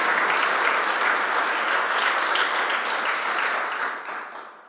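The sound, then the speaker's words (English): Audience applause: a dense, steady crackle of many hands clapping at once, loud and sustained for several seconds before gradually thinning and fading out at the end. “Let's give them another hand of applause for Jesus' sake.”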